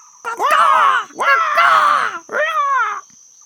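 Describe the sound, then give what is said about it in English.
Macaw parrots in the treetops of the Amazon rainforest's emergent layer give three loud, harsh caws in a row. Each is a drawn-out, raspy squawk that rises then falls in pitch, with brief pauses between them and a faint steady high whine underneath. “And right at the treetops, macaw parrots cawed in the emergent layer.”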